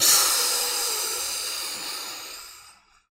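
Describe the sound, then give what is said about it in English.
A voice imitates a spraying hiss, pushing out one long, breathy stream of air for nearly three seconds that starts strong and gradually thins out before cutting off. “You hear a quick yelp. And a loud... kind of like spraying noises, almost just...”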